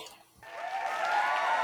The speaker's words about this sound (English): There's a big crowd cheer. They're going crazy.